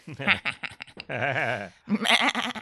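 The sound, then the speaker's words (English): A sheep lets out one long, quavering bleat, loud, framed by brief bursts of people talking just before and after it. “Oh, that was the sheep one.”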